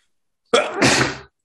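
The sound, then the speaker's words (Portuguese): A single loud sneeze: a short sharp intake burst followed by a broader explosive release, lasting under a second with silence around it. “Santinho.”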